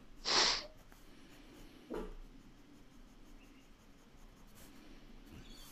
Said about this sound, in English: he's literally lying in his bed, upside down, feet in the air, and he's just decided that something's worth barking at. Like it's casual barking.